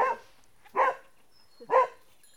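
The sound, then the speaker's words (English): A border collie, one of two working border collies named Pixel and Picaloo that help herd a flock of goats and sheep, barks three times at a steady interval. The woofs are sharp and mid-pitched, with short gaps of quiet between them and no voices. “Their livestock is one-third goats and two-thirds sheep, and they are helped by their two border collies, Pixel and Picaloo.”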